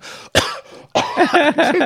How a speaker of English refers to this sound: You're coughing up blood again.